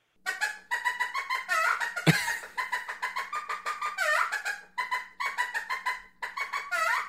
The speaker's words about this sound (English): You would have a chicken.